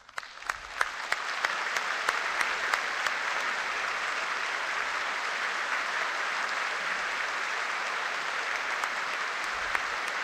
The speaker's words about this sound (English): And the congregation affirms that call with a rousing applause. This kind of sends chills up you.